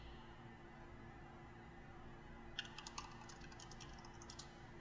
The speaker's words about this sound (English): It's very loud. It's called a mechanical keyboard. I have to mute my thing when I'm doing Zoom calls. Because it's just so loud.